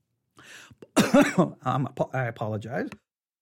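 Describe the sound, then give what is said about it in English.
A speaker about to talk breaks out in a fairly loud cough, followed by a run of rough, voiced throat-clearing noises lasting a couple of seconds, with no actual words spoken. “Wasn't expecting to get ready to cough when I got ready to talk, all right?”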